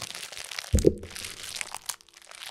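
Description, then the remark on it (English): A crinkly plastic bag of Red Frogs candy being opened: steady crackling rustle, a sudden loud tearing pop partway in, then more scattered crinkling that fades toward the end. No voices. “Sorry, I'm opening Red Frogs.”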